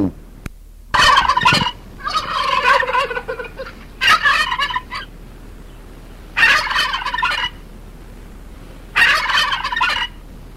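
A turkey gobbles in repeated bursts of rapid, warbling, rattling calls, five loud outbursts separated by short pauses, with no voices.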